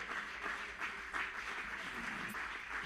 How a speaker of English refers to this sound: Come on, everybody stand to your feet and clap your hands to the Lord. Musicians can come. Come on, clap your hands unto the Lord.